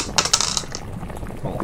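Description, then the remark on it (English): Dice clatter across a hard tabletop, a quick burst of sharp clicks in the first half second that trails off into a quiet tumble and settles, as the dice are rolled for an item. “I roll for an item.”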